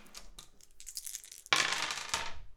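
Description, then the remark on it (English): Dice rattle and clatter briefly as they are shaken, then tumble loudly across a surface with a burst of clicking knocks as they are rolled to pick three musical notes for a jam; no voices. “Okay, well, the dice are showing us B flat, B and D.”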